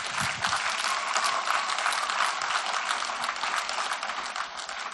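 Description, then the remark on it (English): An audience of children from J-Kids applauds, a dense, steady patter of many hands clapping at an even loudness throughout, with no voices standing out. “If you're wondering who's clapping, they're all in J-Kids.”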